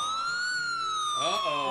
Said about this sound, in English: Right before the time limit was about to expire and people were going to go inside for the dance, they heard sirens off in the distance.